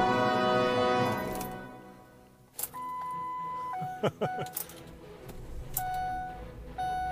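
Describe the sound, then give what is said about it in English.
An older car engine rumbles, then balks with a dip and a few heavy clunks as it's shifted into drive too quickly, while steady electronic warning tones chime in between. “I put the car in drive a little bit too quick.”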